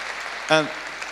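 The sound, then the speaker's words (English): Steady crowd applause fills the moment, and a single short cheering whoop rises out of it briefly in the middle before the clapping carries on. “Yeah, give that a cheer, actually.”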